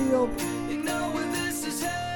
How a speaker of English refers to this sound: It's like jingle bells in the background. I think it's a maybe jingle bells. That's what it sounds like to me. I thought it was a tambourine at first, but it could be either.